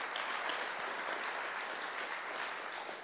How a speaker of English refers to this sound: And so I want to take a moment by way of hand clap, and I just want to honor God for giving us our pastors, but also this great church he's given us. So y'all give an honor for that.